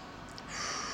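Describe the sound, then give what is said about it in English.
A soft, airy exhale through the nose during a breathing exercise, building halfway in and holding steady as a breathy hiss to the end. Quiet, with no talking. “In through the nose, out through the mouth. And then when you steady your breathing, feel free to breathe out through your nose if you want.”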